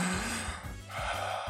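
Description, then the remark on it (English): Heavy breathing blows straight into a Blue Yeti microphone, making loud, rough gusts of air in a couple of long pulls with a brief pause between them. No one talks. “Hear me breathing. Get off my mic.”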